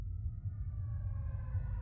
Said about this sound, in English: The sound of sirens arrived in front of the door.